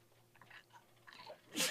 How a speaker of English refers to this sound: I'm gonna sneeze. Sorry. Okay. I felt it coming.